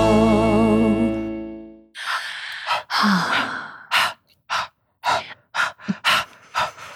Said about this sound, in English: Are you box breathing? That's not how you box breathe. But you're breathing in a box shape. I was trying to make a beat.